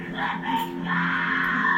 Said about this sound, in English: Stop! Stop yelling.